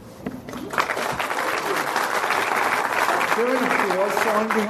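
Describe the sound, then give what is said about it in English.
An audience breaks into applause as guest Marv Wolfman is introduced, a dense, sustained clatter of clapping that swells within the first second and holds steady, with a few voices talking and calling out over it. “What's behind you? An applause sign?”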